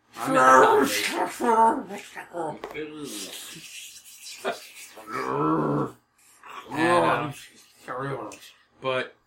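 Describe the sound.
A person voices a monster noise, a growling bear-like roar blended with raspy, hissing spider sounds, in several loud close bursts with short pauses between them.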